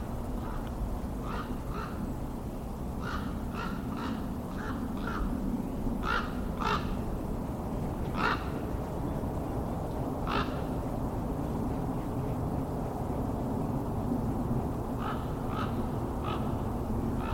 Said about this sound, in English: There's a raven.